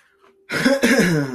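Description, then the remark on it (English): A single loud cough that trails into a raspy, voiced sigh, breaking briefly in the middle after a moment of near silence. “Damn, that was a cough sigh.”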